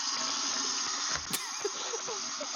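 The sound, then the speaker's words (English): A person urinating during a radio show, picked up by their microphone: a steady, hissing stream of liquid splashes without a break for a few seconds, with a brief dull bump midway and small gurgling tones underneath. “It's like you were pouring a bottle of water onto the microphone.”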